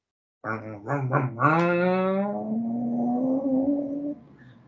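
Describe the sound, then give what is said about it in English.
A voice imitates a car driving off: three short sputtering revs, then a rising engine whine that settles into a steady, buzzing hum for a few seconds before cutting off. “I drove off. That sounded pretty realistic.”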